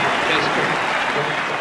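A crowd of 18,000 people at a cricket match in Australia rise to their feet, roaring and cheering a batsman's record-setting run in a dense, steady wash of noise, with no break for the whole short stretch, in a packed stadium.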